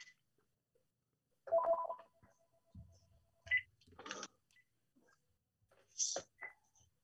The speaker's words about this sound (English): And, you know, let me turn off this phone just a second.